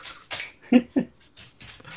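A dog moving about nearby, with soft breathy snuffling and a couple of short, sharper whimpering bursts in the middle, fairly close and moderately quiet, with no one speaking.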